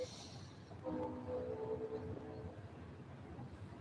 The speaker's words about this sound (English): I'm going to have to wait until this is a long one. That's not the passenger train.